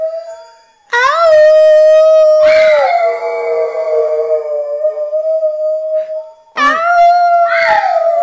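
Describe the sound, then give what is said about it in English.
A dog named Earl howls in long, sustained, wavering tones, the howl rising and falling across several seconds with brief yips at the starts of new breaths. No one speaks. “Can we get Earl cheers. To howl?”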